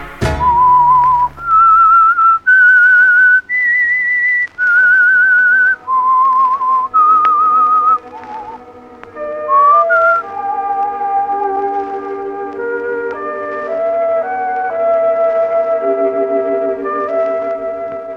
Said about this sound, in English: There's only one thing I like, and that is whistling in the dark.